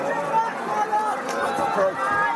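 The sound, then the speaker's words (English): A stadium crowd at a Connacht rugby match in lashing rain, in the final seconds, holds a steady, restless murmur, a continuous wash of many voices without any clear cheer or roar breaking through. “Crowd really don't know whether to cheer or just stand and hope.”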